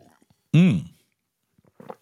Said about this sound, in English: There it is. Write it down. 11:14, sip of the day. 11:14 a.m. West Coast time. Your official sip of the day went down.